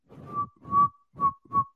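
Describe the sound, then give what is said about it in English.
A person whistles a short melody: four breathy notes in quick succession, each with a thin pure tone riding over heavy puffs of air noise. “Or you could whistle the melody.”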